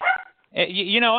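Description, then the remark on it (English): A Norwich Terrier rescue dog barks: a short sharp bark, a brief pause, then a longer, wavering yelping bark, fairly loud and alone. “He's a good dog. He's a rescue dog. Norwich Terrier.”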